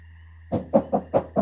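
Five quick, evenly spaced knocks on a bunker door, fairly loud, rapping out a steady rhythm after a short quiet stretch with a faint steady hum underneath.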